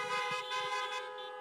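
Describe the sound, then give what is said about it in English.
A sustained, blaring chorus of car horns honking together, loud, with a steady rich harmonic tone and slight pulsing from several horns overlapping. “she's not here right now, but let's give her some honks so she can hear it.”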